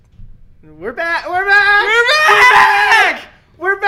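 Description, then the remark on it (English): A loud, drawn-out excited scream from one voice, rising in pitch and holding for a couple of seconds before a short second cry begins. “You screamed so loud for the podcast to be right back.”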